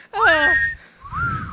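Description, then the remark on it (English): A bright whistled melody rises into a long held note, then a second note slides upward after a brief pause, with a soft low backing underneath. “And the whistling? Yes.”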